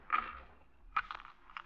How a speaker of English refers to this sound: My keys. My missing keys. They fell out of the pocket. They were in my coat all the time.